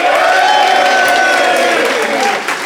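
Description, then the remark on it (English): Loud, sustained applause from the Phoenix studio audience voting for Nish and Ben's case, a dense wash of clapping with some cheering mixed in, holding steady for a few seconds before easing slightly at the end. “If you think Nish and Ben made the better case, applaud now.”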